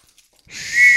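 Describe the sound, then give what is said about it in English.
A small keychain whistle is blown once after a short quiet moment, a shrill, breathy tone that swells and holds steady, loud, with no talking. “There, I got a whistle.”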